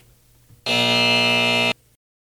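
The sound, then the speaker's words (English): A single loud, harsh buzzer blast holds steady for about a second, with a rasping, overtone-rich tone. It sounds alone over a faint low hum, then cuts off abruptly. “Give her a buzz.”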